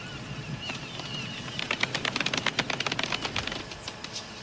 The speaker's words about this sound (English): Golf clap. We're just looking for one... Oh shit! I talked over top of that. Was that the golf clap? Golf clap. Golf clap. Golf clap.